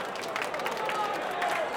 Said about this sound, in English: And making his Wimbledon debut as the chairman's wild card, please give him a huge ovation.